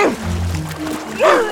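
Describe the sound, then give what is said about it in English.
A dog vocalizes: a low, rumbling growl-like sound followed by a single short, louder bark near the end, with no one talking over it. “That's it, dog. Go, dog, go, doggo.”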